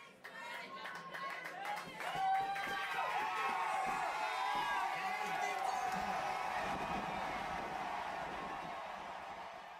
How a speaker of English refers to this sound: To get a sense of how much Louisiana cheered for Burrow, here's a clip of the crowd during his intro to the game during his senior night where they played Texas A&M.